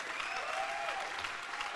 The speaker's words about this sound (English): Come on, that deserves a big clap right there.